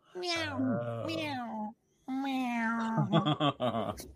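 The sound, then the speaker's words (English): A voice imitates a cat, giving two drawn-out meows with a short pause between them; the second one breaks into choppy, pulsing yowls at the end. “Meow, meow.”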